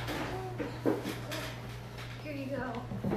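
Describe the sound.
Dice rattle and tumble inside a wooden drawer, several short clattering knocks scattered across a few seconds, with people talking over a low steady hum.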